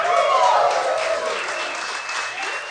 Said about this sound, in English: Yeah, you're applauding your own good fortune... That's a great thing to applaud.